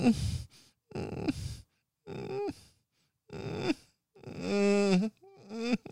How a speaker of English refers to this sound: Ooh, whimpering. No, not of puppies, of human whimpering.